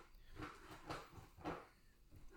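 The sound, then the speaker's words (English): A puppy's claws scrabble and scrape against a couch as he claws his way onto it, in three or four rough, scratchy bursts over a low bed of rustling, with no one speaking. “He had to, like, claw his way into the couch.”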